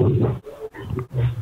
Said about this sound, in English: your phone is barking at you. Yes, I had to mute someone.